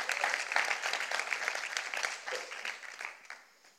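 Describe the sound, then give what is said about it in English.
A crowd applauds a man at the back, many hands clapping in a dense, steady patter that holds strong for a few seconds before thinning out and fading toward the end. “Round of applause for our good man at the back.”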